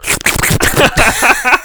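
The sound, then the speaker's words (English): Hands rub briskly together next to a microphone, making a continuous dry, papery swishing that imitates shuffling sheets of paper for a second or two. “I'm just going to rub my hands together next to Rub your hands next to your freaking microphone.”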